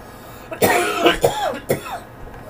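Three harsh, hacking coughs in quick succession from people smoking marijuana, fairly loud, each a raspy burst with a slight wheezy tail, with no talking around them.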